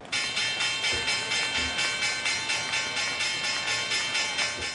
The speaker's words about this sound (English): Let's just hit that stock market closing bell.